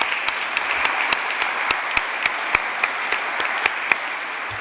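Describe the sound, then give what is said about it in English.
An audience applauds steadily, a dense wash of many hands clapping at even loudness, with sharper individual claps popping out every fraction of a second throughout. The applause is for supporters at an Indiana Black Expo event. “And if we can give them a round of applause.”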